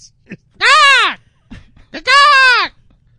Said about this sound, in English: Looks like a goose. It's a goose. Yeah. It's called the Cape Barren Goose. Right. And they're pretty much exclusive to Phillip Island. And when you're there, you hear this constantly.